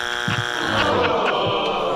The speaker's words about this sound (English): Let's make sure the buzzer works.